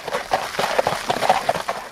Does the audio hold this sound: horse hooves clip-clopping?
yes